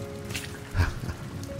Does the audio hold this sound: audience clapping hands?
no